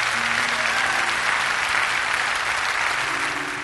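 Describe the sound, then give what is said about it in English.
An audience claps in sustained, loud applause as a clap offering to the Lord, a dense wash of many hands hitting together with no gaps, holding steady throughout and easing slightly at the very end. “Give the Lord a great big clap offering.”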